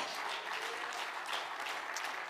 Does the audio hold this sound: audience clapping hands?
yes